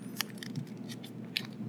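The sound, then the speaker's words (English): Crisp crinkling of a sheet of paper being creased and folded in half again and again, with two sharper crackles standing out against a steady low rustle. “I wish I had a bigger sheet of paper.”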